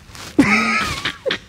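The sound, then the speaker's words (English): A man's voice imitates a pug breathing hard: one strained, drawn-out wheezing moan, fairly loud, then a short huffing puff at the end. “Some of y'all pugs just breathing hard.”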